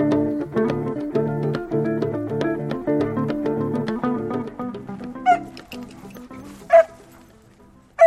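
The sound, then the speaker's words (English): A dog named Gio gives three sharp, high yips spaced a second or so apart, loud, following a stretch of plucked, chord-like music that fades out. “Gio, come here, puppy. Come on, puppy. Let's go. Good boy.”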